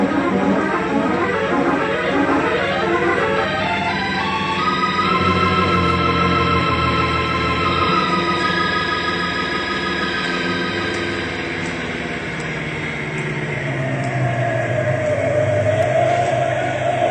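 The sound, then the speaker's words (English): A fire truck's heavy engine roars and whines, its pitch sliding downward as it comes to a sharp stop with the brakes locked. A high brake squeal rises near the end. Loud and continuous, with no talking. “Grey Wolf brings the fire truck to a sharp stop, locks the brakes.”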